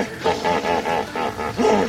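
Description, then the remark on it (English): Hippopotamus calls: a rapid series of deep, resonant honking grunts in a steady pulsing rhythm, about six bursts, loud and harmonic, ending with a stronger, rising bellow. “We're listening to the sounds of hippos.”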